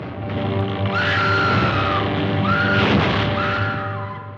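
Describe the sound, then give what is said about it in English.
A woman's horror film scream from 1933: three long, high, wavering shrieks in quick succession, loud, over a dense, hissy old-recording background. “the original Scream Queen, Faye Ray, from King Kong way back in 1933”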